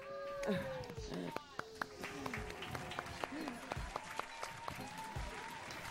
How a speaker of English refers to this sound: We're clapping with our butts.